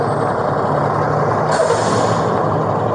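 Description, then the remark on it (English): A loud truck roars with heavy, steady engine rumble, and a sharp hiss of air brakes bursts out about halfway through. No one speaks. “That truck's going to be really loud.”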